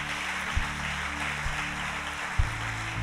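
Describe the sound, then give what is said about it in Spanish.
An audience applauds the Lord during a church service in a steady, dense wash of clapping, with a few low thumps and a sustained hum underneath; no one speaks. “Dale un aplauso al Señor si tú lo crees.”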